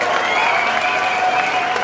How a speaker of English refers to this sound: Cheering, whistles.